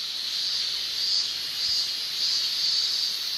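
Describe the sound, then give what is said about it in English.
A dense chorus of male cicadas buzzes without pause in the Chicago area in summer, a steady high-pitched drone that swells and eases in slow waves, loud, with no voices. “The chirping of the cicada. Just the males, by the way.”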